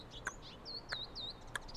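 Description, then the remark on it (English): Small songbirds give quiet, high, rapid alarm calls in a loose series, with three sharp clicks at steady intervals and no voices; the songbirds are alarmed by a raven trying to steal babies or eggs from a nest. “Alarm calls from smaller songbirds tell me that Raven is trying to steal babies or eggs from a nest.”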